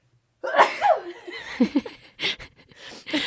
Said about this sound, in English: Your eyes just – I, like, looked at you and your eyes just started to water and I'm like, she's going to sneeze. Yeah, I need to sneeze.